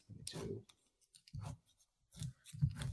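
A pen scratches across paper in several short bursts of strokes separated by brief pauses, a dry rasping texture with a few light taps mixed in.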